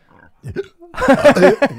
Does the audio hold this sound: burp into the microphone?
yes